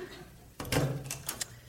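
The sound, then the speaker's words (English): A back door swings open after a brief quiet, with a rough, creaky scrape followed by a few short clicks and rattles as it settles. “Oh, and I'm further afraid ours is opening.”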